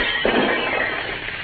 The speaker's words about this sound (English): The idea of painting all that glass over there. Keep me busy undoing what all you did. May as well break the glass out as to have it that way.